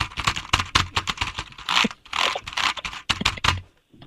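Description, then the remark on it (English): Fast, irregular clatter of keys on a computer keyboard, fairly loud, with short bursts of typing and a few brief pauses over about four seconds, no voices. “Hang on, I'm still typing it in.”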